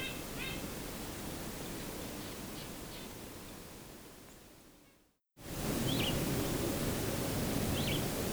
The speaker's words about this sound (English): This call did turn out to be a purple finch. My initial hunch, it seems, was correct here. They sometimes use this vireo-like call.